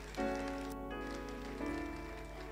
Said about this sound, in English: Oh, clap for them, clap for them, clap for them.